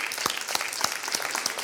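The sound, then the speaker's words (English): A crowd applauds those who have served their country and put themselves in harm's way, with steady, dense clapping, a busy patter of many hands with a few sharper individual claps standing out, sustained at an even level throughout. “And what you've done, yeah, let's clap for them.”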